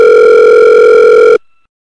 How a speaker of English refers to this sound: It was 9 in the morning when Danny heard her phone.